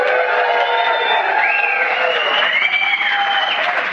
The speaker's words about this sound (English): So guys, everybody, welcome everybody who's listening online. Let them hear you. Give a big yell.